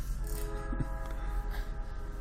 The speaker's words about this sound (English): There's a train in the background. Welcome to Sketch. I love it. It's gives a good effect. It's but, I like it.